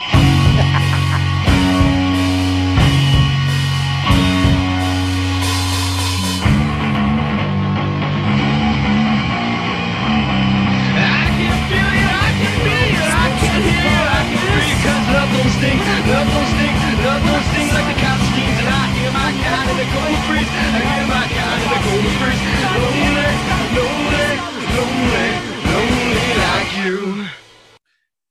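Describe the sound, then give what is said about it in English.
A short, loud punk rock song, about 15 seconds long, played at full volume: a brief intro gives way to a dense, driving wall of distorted guitars and crashing drums, then stops abruptly. “That song was about 15 seconds long.”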